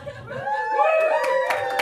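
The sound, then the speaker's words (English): An audience breaks into laughter and scattered clapping after the punchline of a comedian's joke, with sharp hand claps picking up near the end; the crowd is fairly loud, with no one speaking. “No cancer is just like a really cheap ploy of a thing to yell at the end of a joke so you guys clap.”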